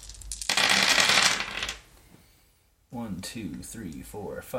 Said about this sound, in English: I feel like he's rolling like 30. I feel like he's not rolling 30 dice. Only 14.